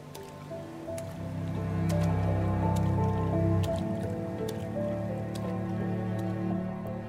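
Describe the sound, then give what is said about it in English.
Wet, squelching splashes of boots wading through shallow, murky water at low tide as a sailor carries people on his shoulders to a ship, with drips and sloshing that build and continue steadily for several seconds, moderately loud, no voices. “I could only wave at my mother as he carried us through the low tide to the ship, his boots splashing through the murky water.”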